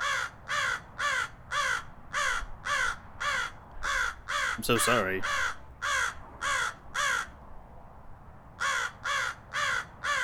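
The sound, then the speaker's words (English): A raven caws in a loud, rapid, evenly spaced series of harsh croaks, pausing briefly before resuming; a voice speaks over it for a moment midway. “Raven, okay, wait. I have to stop you there.”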